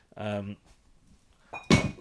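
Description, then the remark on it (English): A short vocal sound, then a sudden thunk and clatter as a cup is knocked off a settee and hits the floor, with a brief ringing tone after the impact. “…'s knocked his cup off the settee.”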